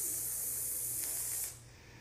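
A steady, bright sizzling hiss runs loud and close for about a second and a half, then cuts off abruptly, leaving only a faint low hum. No one speaks.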